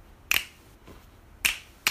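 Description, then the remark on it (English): Sharp, crisp finger snaps ring out alone, three bright clicks spaced unevenly with a quieter tick between the first two, each cutting off almost instantly. “You got the snap?”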